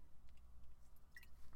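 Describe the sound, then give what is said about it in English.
Quiet sipping of water: a few soft wet mouth sounds and a small gulp or click near the end, with no talking. “I'm going to have to take a sip of water.”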